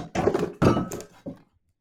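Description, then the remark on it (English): A cat does a full-on dive into a computer with heavy thumps and rattling clatter: two loud, dense impacts back to back, then a shorter knock before it goes quiet. No one speaks. “full-on Superman dive into the computer.”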